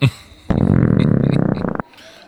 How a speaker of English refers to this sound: Was that a belch?